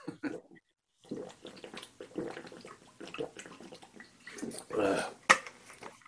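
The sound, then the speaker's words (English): Someone drinks water, with soft sloshing and sipping noises in uneven bursts, a sharp clink of a glass toward the end, and faint voices murmuring in the background. “I don't want to, I'm going to drink some water first.”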